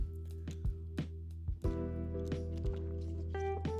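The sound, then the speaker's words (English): Someone takes a drink of water: a run of soft, wet gulps and swallows at a steady pace over a constant low electrical hum, quiet, with no talking. “Water break.”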